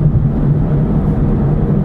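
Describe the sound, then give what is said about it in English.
Loud, steady tyre noise from a moving car: a continuous low, heavy rumble that holds constant throughout, with no separate bangs or slaps standing out and no voices. “Quite a lot of tyre noise as well. You can probably hear it slapping and banging.”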